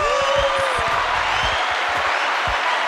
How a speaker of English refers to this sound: Can I get a round of applause for that Lisa Mays rant?